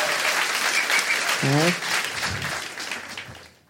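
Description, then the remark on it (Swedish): A crowd claps steadily in a dense, even wash of applause, with a short vocal cheer rising briefly partway through before the clapping thins and fades out. “Applåder.”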